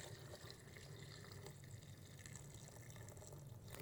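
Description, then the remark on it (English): About 1 cup of water pours steadily into a container over about 6 soaked dates and 3/4 cup of softened cashews, a continuous splashing and trickling that lasts a few seconds at an even level, with no voices. “And then I'm gonna add about 1 cup of water.”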